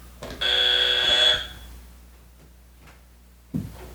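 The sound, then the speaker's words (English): A single loud, harsh game-show buzzer blares for about a second, a steady bright electronic tone with a rasping edge, then cuts off into near silence before a brief thump. “Buzz.”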